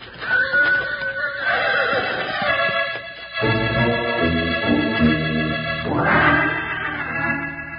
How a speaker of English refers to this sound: I can't get near it, Beans. That horse will kill me.